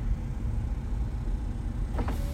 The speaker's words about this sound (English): Yeah, man, I'm gonna roll down my window a little bit so y'all can hear the moped.